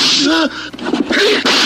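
A loud, sharp 'buck slap' sound effect on Buck Sexton's show cracks out, with vocal yelps and exclamations mixed into the brief burst of noise, aimed at the former CIA director.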